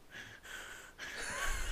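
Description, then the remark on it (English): A voice imitates a man's heavy, effortful breathing while working out at the gym: about three harsh, forced breaths in a row, fairly soft, the last one longer and louder. “And there's like a video of him at the gym and it's like... Yeah. Like breathing and I'm like, this dude's fucking weird.”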